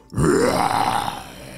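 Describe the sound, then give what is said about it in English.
A voice growls out a single drawn-out roar, rough and guttural, rising in pitch before slowly fading, imitating a dinosaur. “And I can roar!”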